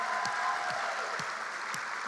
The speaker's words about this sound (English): So good to be able to be together in God's house, Spring Lake Park, Maple Grove, and Elk River as well. And let's send our greetings to Maple Grove and Elk River, if we can, with a little applause and cheer.